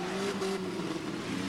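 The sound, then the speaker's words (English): A voice imitates the engine of the race car Lightning McQueen with a steady, buzzing drone that holds a single pitch throughout, fairly loud, with no words spoken. “Now you got a Lightning McQueen.”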